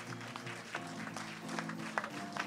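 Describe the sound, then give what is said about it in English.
A standing audience gives the Lord a hand clap after a sermon, a dense, steady patter of many hands, with a sustained low musical tone humming underneath and no talking. “Give the Lord a hand clap if this sermon ministered to you at all.”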